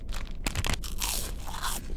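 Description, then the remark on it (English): Loud, dry crunching as someone bites into and chews a granola bar, with a sharp bite followed by several gritty, crackly chews over two seconds and no talking. “I'll take the granola bar.”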